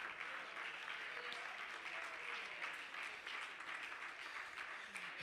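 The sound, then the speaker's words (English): A crowd claps their hands together in a steady, dense wash of applause that holds at an even loudness from start to finish, with no voices standing out. “Clap your hands if you believe that across this place.”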